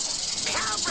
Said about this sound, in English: Alright. Well, here goes. Snake strike.